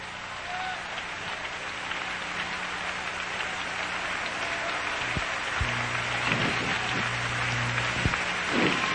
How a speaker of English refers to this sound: Somebody clap your hands and love Him right now.